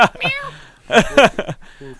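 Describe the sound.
A person imitates a cat's meow, giving a couple of drawn-out vocal mews with sliding pitch, mixed in among brief voiced sounds.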